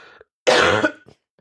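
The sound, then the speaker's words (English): A single loud cough bursts out abruptly, rough and throaty, followed by a short breathy tail and a faint sound just before it. “I mean, it was a cough.”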